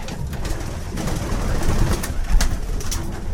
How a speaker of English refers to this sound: His pigeons may look and sound like your average park pigeon, but what makes these birds special is that they're homing pigeons.